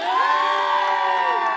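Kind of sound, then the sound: crowd, crowd cheering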